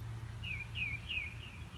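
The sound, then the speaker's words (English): Faint birds chirp in quiet Big Sur with no cars or people, a few short high descending calls repeating over a low steady hum of background noise. “You could hear the birds, like, just the movement of the birds in the air, and there are more birds, and then in the morning I hear more birds when I wake up, and I see more birds, and I hear things that I never heard.”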